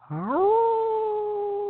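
A single long wolf howl rises in pitch, then holds a steady, mournful tone to the end, sounding fairly distant with no other voices around it.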